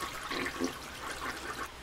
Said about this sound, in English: Your toilet's clogged, sir? The toilet's clogged with the pillow coverings, and I'm trying to flush them, but there's water everywhere. They just won't go down.